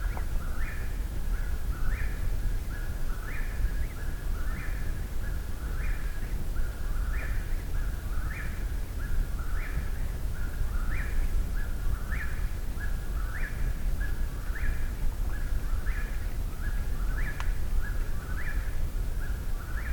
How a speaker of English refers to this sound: Probably one of the most repetitive bird songs there is, the most constant.